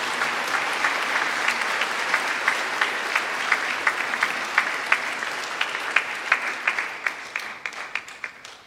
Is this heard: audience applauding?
yes